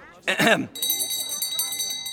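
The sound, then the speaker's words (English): After a brief clattering burst, a small copper bell rings with a bright, sustained shimmer. Its high tones linger for over a second while faint voices murmur underneath. “Fine Mistletonian copper, that bell.”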